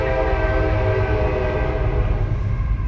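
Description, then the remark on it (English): A train horn blows one long, steady, loud blast that holds for the whole moment, its layered tones ringing out over a low rumble of the passing train. “And I'm waiting for the train horn. There it is.”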